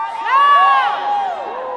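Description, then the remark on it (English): An audience shouts and cheers together during a sermon, answering the preacher's call to shout, a dense swell of many high, overlapping voices with whoops rising and falling. The loud burst holds steady for under two seconds. “Sometimes you need to shout. Y'all ain't shouting?”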